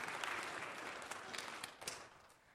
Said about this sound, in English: Give that boy a round of applause for solving that puzzle.